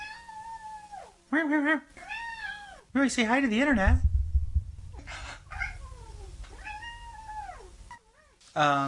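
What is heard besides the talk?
cat meowing near microphone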